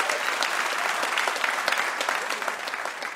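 An audience applauds for mystery guest Amy Webb, steady, dense overlapping hand claps forming a bright, sustained wash of noise at an even loudness throughout.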